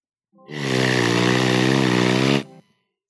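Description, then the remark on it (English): A single loud, buzzing raspberry blown with the lips, held steady for about two seconds with a rough, engine-like rattle before cutting off sharply, with no talking around it. “But all you get is two raspberries, of which this is the first.”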